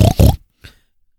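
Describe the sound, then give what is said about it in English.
Two loud, rough oinks from a pig called History Hog in quick succession, followed by a brief pause and then a shorter, higher, fainter squeal-like cry, with no talking. “Oink, oink, wee, wee!”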